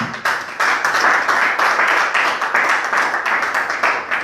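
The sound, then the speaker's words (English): An audience at a church service claps steadily, many hands overlapping into a dense, sustained patter of sharp slaps with a few louder accents, loud throughout and with no voices over it. “Clap your hands for me.”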